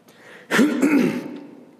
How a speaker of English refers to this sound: Excuse my coughing this morning.